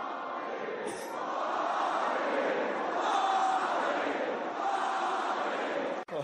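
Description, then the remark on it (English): A large tennis stadium crowd roars and cheers continuously after Alexei Popyrin's win over eighth seed Taylor Fritz takes him into the third round. It is a dense, sustained wall of voices and applause that stays loud throughout before cutting off abruptly at the end. “Listen to the crowd.”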